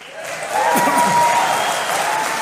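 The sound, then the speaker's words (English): A large conference crowd at CPAC gives a standing ovation, applauding loudly and steadily, with scattered cheers and whoops rising over the dense clapping. The noise swells after a moment and stays full for the rest of the short burst. “Crowd loved it.”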